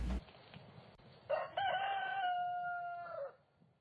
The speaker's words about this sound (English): The little rooster goes cock-a-doodle-doo, doodle-doo, doodle-doo.